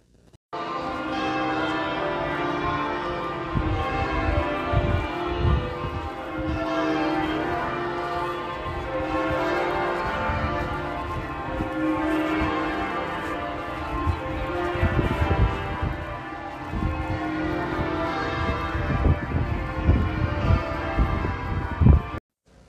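Church bells peal continuously for about twenty seconds, their overlapping tones blending into a dense, resonant wash at steady loudness, with no voices present.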